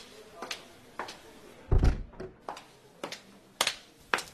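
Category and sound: household object, door being closed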